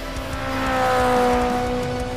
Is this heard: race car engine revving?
yes